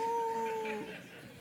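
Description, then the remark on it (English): A preacher during a sermon imitates a dog's howl: one steady, slightly falling wail lasting under a second, moderately loud, then trailing off into quiet. “Sometimes the dog's got to bark.”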